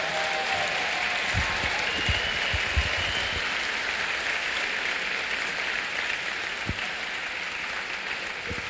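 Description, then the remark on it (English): A large audience applauds the builder generation, who have been asked to stand up, a dense wash of many hands clapping that holds at a fairly even loudness for several seconds, with a few sharper individual claps standing out. “And I love that, you know, our intuitive response is to go, you know what? Let's just clap and celebrate.”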